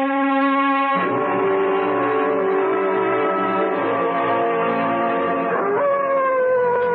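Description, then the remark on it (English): A dog, old Whiskey, howls continuously in long, sustained, mournful tones that waver and shift in pitch, loud, with no voices over it. “What the devil is the matter with that dog, Chadsworth?”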